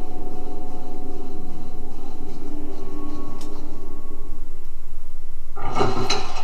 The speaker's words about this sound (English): Opening the door and a cutscene. It seems to be very dark inside.